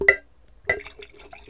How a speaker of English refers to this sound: I'm pouring this for you.